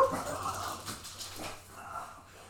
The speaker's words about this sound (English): Yeah. That was part of the sound effects. Yes, folks. The dogs. Yeah, that was part of the sound effects, folks. That's all that was.